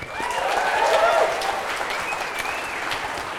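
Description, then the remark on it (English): A live audience applauds a guest's new job as a staff writer at The New Yorker, steady dense clapping with a few cheers and whistles rising above it, holding fairly loud for the whole stretch before easing slightly at the end. “And I should also say now you are a staff writer at The New Yorker, which round of applause.”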